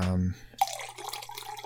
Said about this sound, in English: That sounds like you're pouring a Jack Daniels, but it's a weird-looking 7-Up you've got there.